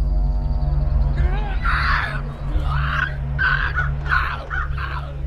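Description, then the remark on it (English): Crows caw in a ragged series of five or six harsh, rasping calls, fairly loud, over a steady low droning rumble that runs throughout. “Oh my god, it's for the crows! Oh, they're after the crows!”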